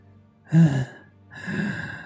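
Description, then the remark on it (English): A voice imitates labored breathing with two heavy breaths: a sharp raspy intake followed by a longer, wheezing exhale, with no other sounds around them. “And there's like this labored breathing.”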